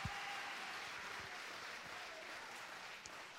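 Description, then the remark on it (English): A large church audience claps steadily in praise of Jesus, a dense sustained wash of many hands applauding together with no gaps. “Can we all give praise and adoration and clap for Jesus?”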